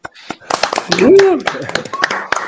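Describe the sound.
A short burst of applause on a count of three to close a conversation on The Journey Talk: dense, crackly clapping from a small crowd that starts abruptly, with a brief voiced whoop or cheer rising over it before the clapping thins out.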